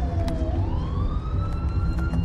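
An ambulance siren wails, its tone sweeping steadily upward over a heavy, rumbling engine drone, loud throughout with no voices.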